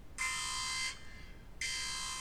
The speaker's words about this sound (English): Spoiler alert! Spoiler alert! Can you hear that? Can you hear the siren? I'm using a low-tech solution here.